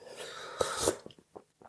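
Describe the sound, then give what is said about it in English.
An airy slurp as someone sips tea from a mug, followed by a few soft, brief swallowing or breathing sounds in otherwise quiet surroundings. “And I'm going to have a sip of tea.”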